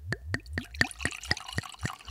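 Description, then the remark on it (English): Wine glugs from a bottle into a glass in a quick, steady series of about nine gurgling pulses, clear, with no voices. “So sit back, pour yourself a glass, and let's hear what the guys have to say this week.”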